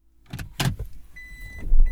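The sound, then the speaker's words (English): Someone getting into a car to drive to the gym: a couple of sharp clunks and rustles, then a low engine rumble swells as the car starts to pull away, with a faint electric whine. “And then I pull on my socks and shoes and I get in the car and drive to the gym.”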